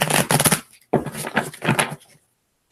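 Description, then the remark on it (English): A deck of cards is shuffled in two quick, crisp riffling bursts separated by a brief pause, with no voices heard. “All right. One more shuffle.”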